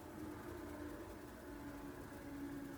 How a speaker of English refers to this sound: You can hear that garbage truck just went by again. pretty quiet, though, because my house is fairly well insulated and I'm on the second floor, so you can hear it driving off in the distance there.